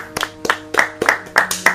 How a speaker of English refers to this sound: Can we get a quick round of applause for women?